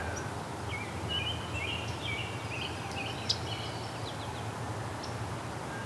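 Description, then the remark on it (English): A myrtle warbler gives a single soft, sharp tick call, brief, over a steady background hiss with faint chirps from other birds scattered throughout. “It's a myrtle warbler with its tick.”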